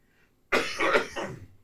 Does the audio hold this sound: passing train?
no